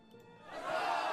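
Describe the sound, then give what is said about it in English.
A group of friends breaks into cheering after a player sinks the 8 ball in a game of pool, the noise swelling from a low murmur into loud, sustained whooping and shouting voices for about a second. “His friends cheer.”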